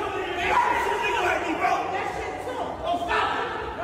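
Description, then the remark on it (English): A man yells loudly and almost without pause for several seconds, his raised, strained voice rising and falling over a murmur of crowd noise. “See, a nigga yelling is weak though.”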